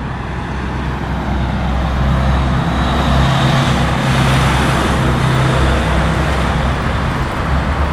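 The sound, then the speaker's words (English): Steady, loud road traffic rolls past on Willie Street, a residential street with homes and small businesses and a 25 mph speed limit, on a weekday afternoon: a continuous wash of car and truck engines and tire noise with no pauses. “I visited Willie Street last Wednesday to sample the atmosphere on the roads.”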